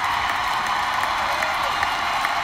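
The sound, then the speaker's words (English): A large stadium crowd at Children's Mercy Park in Kansas City roars and applauds during a match between the Kansas City Current and the Portland Thorns, with about a minute of extra time left. The cheering and clapping form a steady, dense wash that holds at an even, loud level throughout, with no single voice standing out. “Crowd is into it here.”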